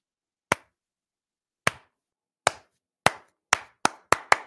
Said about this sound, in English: Slow clap. You got to slow clap. It doesn't really work with one person. Let me try it again, though.